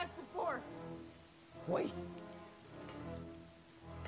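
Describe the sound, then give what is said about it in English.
Sudden rain falls in a steady, fairly quiet hiss on a surface, with a couple of brief louder bursts and faint, muffled voices in the background. “Yeah, the rain was really sudden there.”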